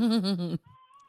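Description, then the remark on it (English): A baby in the background cries once in a short, wavering wail lasting about half a second, loud, then cuts off, leaving only a faint tonal hum. “What's happening in the background? There's a baby crying.”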